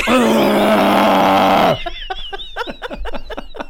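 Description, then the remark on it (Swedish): A person imitates a roe deer call: one loud, strained, harmonic cry lasting nearly two seconds, then a quick run of short, high, chirping squeaks. “Mamma, är rådjur nu som vill gå hem?”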